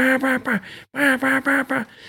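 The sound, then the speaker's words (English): A duck call blows a loud hunting-style hail sequence of sharp, reedy quacks, a quick burst of three, a brief break, then a longer string of five tapering off, with no one talking. “I mean, there was this one spot that I hunted in the timber off the Mississippi River down Louisiana, and I stayed on a hail call, on a hunting style hail.”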